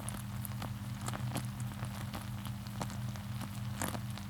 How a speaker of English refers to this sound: The sound of the bubbling sugar for the caramel changes when all the water evaporates and the bubbles go from large to small.